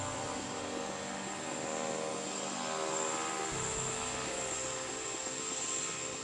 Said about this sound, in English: Once the door is shut, and once I spin the turbine and the engine starts, they get very, very quiet.